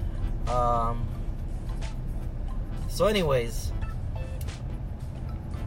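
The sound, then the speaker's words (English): A steady low rumble of road and engine noise fills the cabin of a moving car in traffic, constant throughout, while a person speaks over it. “I'm in traffic.”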